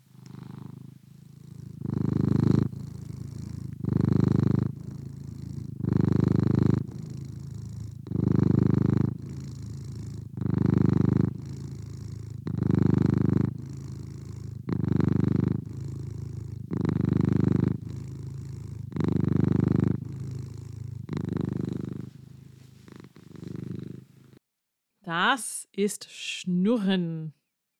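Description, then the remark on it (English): A domestic cat purrs steadily, a deep rumbling rhythm of about a dozen long pulses, each inhale and exhale clearly audible, before it stops and a brief rustling noise follows. “That is my cat's purr.”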